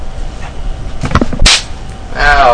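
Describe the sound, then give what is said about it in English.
A single sharp, loud slap against skin cracks out after some faint rustling, followed moments later by a voice crying out in reaction. “I was trying to get your attention. Slap.”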